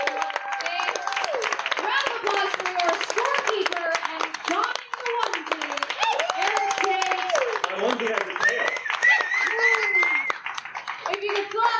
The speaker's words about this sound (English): Give a round of applause to all of your panelists tonight.